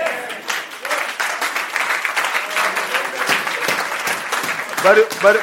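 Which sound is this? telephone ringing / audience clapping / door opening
audience clapping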